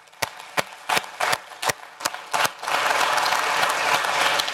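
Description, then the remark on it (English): Audience applause for dads starts as a few scattered, sharp claps in an uneven rhythm, then swells into steady, full clapping from a crowd that continues to the end. “Will you give dads a round of applause?”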